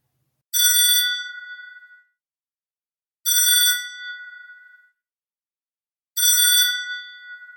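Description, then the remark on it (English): A telephone in a house rings three times at steady intervals, each bright, bell-like ring fading out before the next, clear with silence between rings and no voices. “The phone would ring.”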